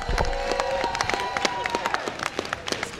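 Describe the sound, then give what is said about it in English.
A crowd in Buffalo applauds the Team City Hall Buffalo All-Star Extreme Cheer and Dance squad at a morning rally cheering on the Buffalo Bills, dense overlapping claps forming a loud, continuous patter, with a few voices and whoops rising through the clapping. “Let's give them another great big round of applause.”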